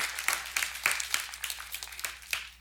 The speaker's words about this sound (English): yeah, you can clap if you want.